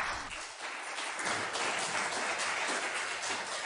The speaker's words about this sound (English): Look at that, you're getting applause.